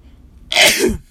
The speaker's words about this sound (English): Excuse me, my bad. I had to take that pause. I just felt that sneeze coming up